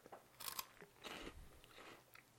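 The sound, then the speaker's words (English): Close, crisp crunching of a tomato and spinach snack being bitten and chewed right at the microphone, a few bursty crunches over a couple of seconds with no talking. “I just crunched right into the microphone.”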